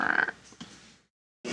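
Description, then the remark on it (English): A short, strained creak of a couch, a scratchy squeal that fades out into silence, followed by the start of another creak at the very end. “The creaky couch creaks in the night.”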